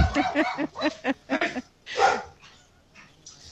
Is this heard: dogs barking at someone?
yes